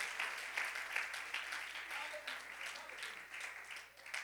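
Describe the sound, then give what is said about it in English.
An audience in a building applauds steadily for several seconds as a hand clap of praise to the Lord, a dense wash of many hands clapping together, with a few scattered voices faintly mixed into the clapping. “Somebody give the Lord a hand clap of praise across this building.”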